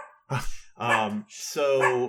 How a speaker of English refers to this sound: Oh, I apologize. My dogs are barking.